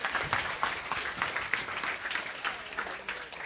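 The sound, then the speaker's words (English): An audience claps steadily, a dense, even patter of many hands that keeps going for a few seconds with no voices over it. “Yeah, hey, you can clap for that.”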